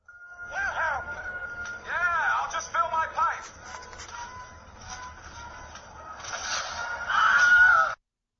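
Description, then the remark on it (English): The Wilhelm scream sound effect, heard as a string of short, high, wavering yelps that swoop up and down in pitch, ending in a louder, sustained shriek, with no talking. “And there's some discussion of the Wilhelm Scream.”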